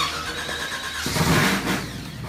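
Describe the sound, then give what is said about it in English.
A race car engine cranks and fires into life, then revs up loudly in a surging roar before settling, with no one speaking. “You're building, tinkering, or tuning your race cars. Kick it in the guts, Barry.”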